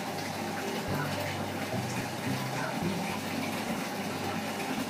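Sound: waterfall rushing water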